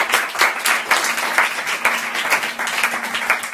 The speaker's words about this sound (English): Well, is that good or what? Let's give her another clap, huh?